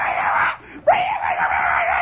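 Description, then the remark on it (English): A boy screams and yells from far off in the woods at the other end of a grade school playground, two sustained high-pitched cries separated by a brief gap, sounding distant and slightly muffled. “He's in the woods now, and he's yelling. You can hear him yelling.”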